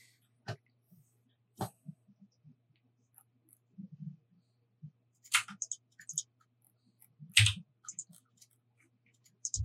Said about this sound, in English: Based on the fact that I'm hearing typing from Songbird, I suspect a spell might be coming.